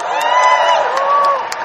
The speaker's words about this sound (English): There's mostly a cheer from the women. Was there a few chaps in there? Yeah!